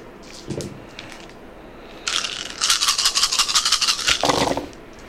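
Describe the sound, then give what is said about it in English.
A handful of dice rattle and clatter in a rapid, bright burst for about two and a half seconds, ending with a duller knock. A few faint clicks come before it, and no one speaks. “I'm gonna give them a few extra dice.”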